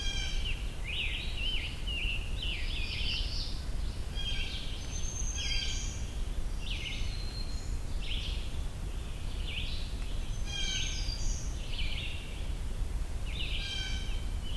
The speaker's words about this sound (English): Blue jay.